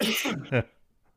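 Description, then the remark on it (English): A man clears his throat, a raspy rumbling push followed by a short, sharper voiced burst, then brief quiet. “So, excuse me, I'm going to clear my throat.”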